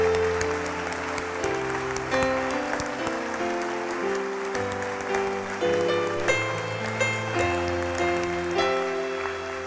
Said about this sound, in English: Let's stand to our feet. Don't stop clapping. For just 20 seconds.